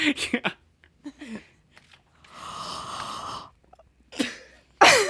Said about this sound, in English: I can't yawn. All right. We'll have to get... Yawn again. Dude, the Foley guy will totally yawn for you.